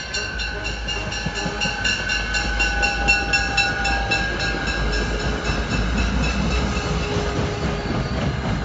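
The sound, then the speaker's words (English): A local commuter train pulls into the station, rumbling steadily, its wheels clacking in a rhythmic pattern over the tracks, with a faint high metallic whine drawn out above the heavy low roar. “But then finally, a local commuter train finally pulled into the station.”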